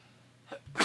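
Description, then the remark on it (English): A single sneeze, with a short in-drawn breath before it and a sharp, breathy burst at the end. “Bless you.”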